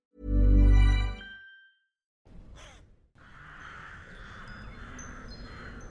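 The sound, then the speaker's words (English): A single loud, harsh crow caw rings out, followed by a short pause, a brief flutter of wingbeats as crows take wing under a dim, grey sky, and then a soft outdoor hush with faint chirps. “Branches move and clatter, crows take wing, their cawing dull against the dim, grey sky.”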